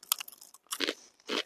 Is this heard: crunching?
yes